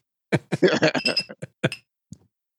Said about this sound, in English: Now wait, I don't have a bottle to open, but maybe I can do a pour and see if this comes true. Hold on. Tip a little in the glass. Oh, there we go.